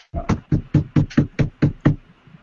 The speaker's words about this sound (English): All right, so, are you knocking on her door? Oh, yeah. Okay.